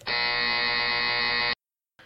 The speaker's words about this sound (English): You've buzzed in first.